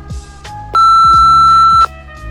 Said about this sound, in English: Hey, this is Dan Dingleberry's voicemail here, Regional Marketing Director of BMP Corporate. Go ahead and leave a message after the beep and have a rise and grind day.